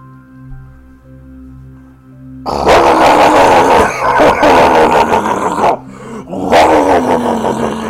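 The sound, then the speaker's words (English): A low, steady droning hum gives way to a loud, rough, growling roar of an engine trying to start. It cuts out briefly, then sputters back into another harsh burst. “Okay, I'm starting the engine now!”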